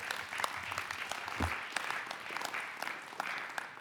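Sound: applause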